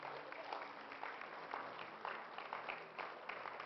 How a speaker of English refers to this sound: Thank you, Lord. Thank you, Lord. Praise the Lord. Give the Lord a hand clap.